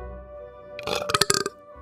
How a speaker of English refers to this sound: That was a little better. Especially for a coffee belch.